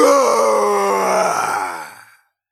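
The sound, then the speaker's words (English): A man imitates a roar, letting out a long, deep, guttural roar with his voice, sustained and loud for about two seconds before trailing off into silence. “let's hear your roar.”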